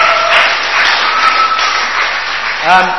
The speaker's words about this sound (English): Very impressed by the array of cakes and biscuits as well. Incredible, weren't they good? Yeah. Let's have a round of applause for whoever made them. Incredible.